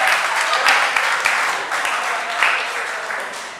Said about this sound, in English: If woman is suffering and suffering is hope, woman equals hope. All the women clap right there.